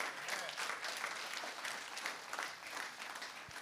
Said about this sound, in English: Come on, somebody. I wish you'd clap your hands.